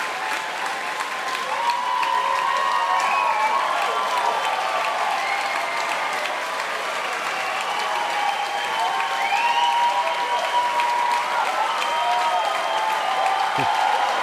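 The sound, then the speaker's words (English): A large concert crowd applauds steadily throughout for a solo performer playing guitar, a dense continuous wash of clapping with scattered whoops and cheers rising above it, sustained at a fairly even, loud level. “This crowd loves him for good reason.”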